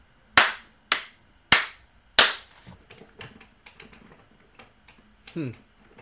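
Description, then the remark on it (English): Four loud, sharp hand slaps given as a rating land in a steady rhythm, followed by a scatter of quieter clicks and taps and a brief rising, pitched squeak near the end. “Okay, if I'm reading this correctly, how do you four slaps, and you're being blinded by the light.”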